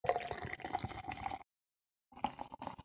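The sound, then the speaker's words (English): Mountain Dew Flamin' Hot soda pouring, a steady splashing trickle that stops for a brief pause and then resumes in a second shorter stream. No one speaks. “I don't know if it was on mic, but yeah, that's the rest of my Mountain Dew. Mountain Dew Flamin' Hot.”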